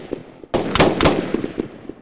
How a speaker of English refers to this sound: You shot me. You shot my deputy.